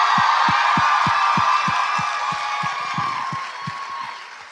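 audience cheering and applause

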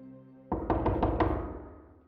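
knock on a door

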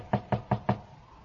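knocking on a door

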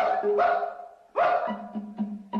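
dog barking

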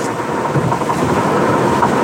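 thunderstorm with rain

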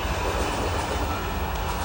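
train arriving at station

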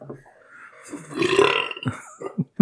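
loud belch

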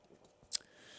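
sipping coffee

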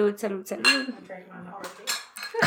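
glasses clinking

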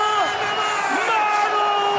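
arena crowd cheering

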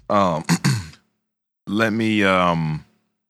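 person yawning

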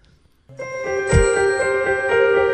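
ding-dong chime

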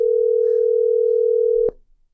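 phone call ringing tone

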